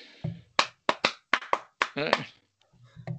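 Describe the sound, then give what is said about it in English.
A quick run of about seven sharp hand claps in a steady rhythm, loud, followed by a short burst of voice and some faint low murmuring. “I will make a clap instead of making it rain.”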